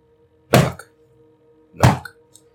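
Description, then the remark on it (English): Two solid, dull knocks, a little over a second apart, each a loud, full-bodied thump that fades quickly, over a faint steady hum in the background. “Knock.”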